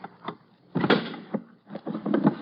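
A series of rough, strained rattling and scraping bursts as a locked drawer is forced open, irregular over a couple of seconds.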